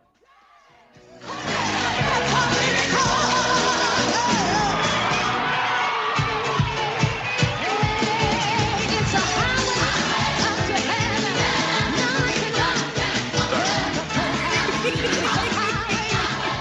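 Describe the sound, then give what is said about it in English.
A large crowd erupts in loud, sustained cheering and shouting after a brief quiet start, with bursts of clapping and thumping mixed into the roar, staying intense right to the end. “I started doing like the clapping and the moving.”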